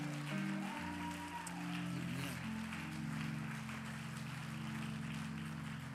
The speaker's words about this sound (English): You go to a great church. You ought to clap your hands for that.